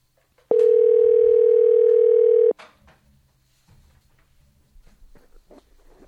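A steady, loud telephone dial tone as a listener is called, holding a single mid pitch for about two seconds, then cutting off abruptly, leaving faint low rumbling and soft background noise.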